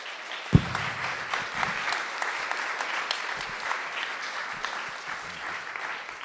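A crowd claps steadily for several seconds, a dense patter of many hands with one sharp louder clap near the start, and no voices speaking.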